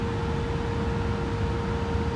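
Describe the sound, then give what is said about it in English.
A steady, heavy engine rumble from a distant truck in Spokane, Washington fills the whole stretch, low and droning with a faint hum on top, constant in loudness and with no voices. “Dude, that truck thing is so loud. That thing, that truck is like far away from me.”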